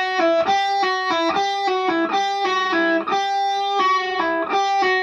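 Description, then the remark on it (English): A distorted electric guitar plays a quick run of sustained, buzzy notes, with brief upward pitch bends as fingers pull off the strings, pulling each note slightly sharp and giving a faint meow-like slur between notes. “I think it was Alan Holdsworth who actually sort of said he hated what he called the meowing sound that you get when you pull a note off, because obviously as you pull away, you pull the note slightly sharp.”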